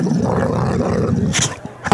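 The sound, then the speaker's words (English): A therapy dog growls playfully while playing, in a continuous low, rumbling snarl, fairly loud, ending with a couple of sharper huffing bursts. “my dog, Basil, begin to play. And he makes that noise while he's playing”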